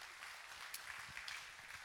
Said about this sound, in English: Last week, for those that were here, we got to celebrate and watch 20 people publicly profess their faith in Jesus through baptism. So that was pretty cool. Y'all can give a round of applause to that.